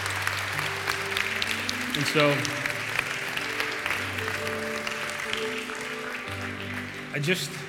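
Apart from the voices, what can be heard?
audience applauding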